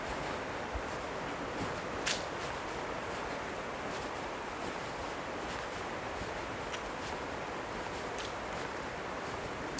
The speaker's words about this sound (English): I would say it's genuinely quiet here. I hear the hum of electricity. Very faint. But otherwise it's mostly the distant river and virtually no wind.